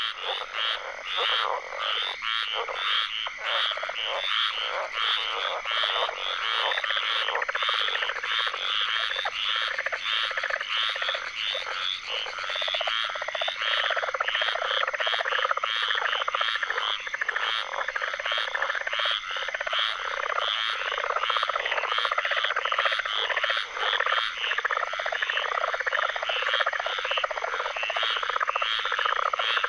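A dense chorus of tree frogs calling nonstop in a swamp in Apalachicola, Florida, recorded by Lang Elliott and Ted Mack for their album; countless overlapping trills and peeps form a loud, shimmering wall of sound with no voices.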